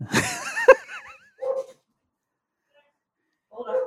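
A female dog barks and yelps in a quick, pitch-bending burst, then lets out two shorter, separate barks after pauses, moderately loud.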